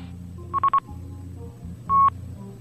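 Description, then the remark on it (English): Three quick, steady electronic telephone call-waiting beeps at a mid-high pitch, then a pause and one longer, louder beep of the same pitch, over a low background hum with no talking. “Well, hey, I got somebody beeping in. Let me take this call.”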